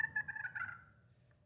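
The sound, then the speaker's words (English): A soft, rolling turkey hen purr made on a turkey call, a comfortable feeding-type sound: a fluttery trill that fades over about a second before a brief new note starts at the end. “That's a purr. That's kind of a comfortable feeding type.”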